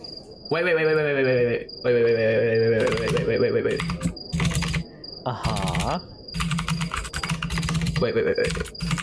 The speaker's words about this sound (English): Loud typing.